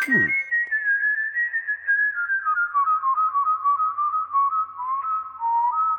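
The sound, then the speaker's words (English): A clear, sustained whistled melody with bird-like warbling tones, gliding slowly downward in pitch over several seconds, heard alone with no talking. “Here's whistling wren. It says, wow your friends with the melodic whistles of the wilds.”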